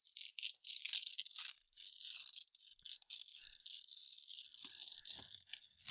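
A long stretch of crisp, crackly rustling of a thin, long sheet of paper from Kinko's being handled and crumpled, with dense bursts and brief pauses and no talking.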